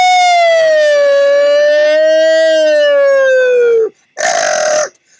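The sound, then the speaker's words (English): A person vocally imitates the siren of an old police car with a long, loud, wavering wail that slowly dips and falls, breaks off briefly, then returns in a short burst. “I know why you're not going, woo woo, because that's the old car, police cars, right?”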